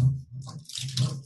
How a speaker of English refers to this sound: Over here, noisily trying to open her other bottle. The mini bottle.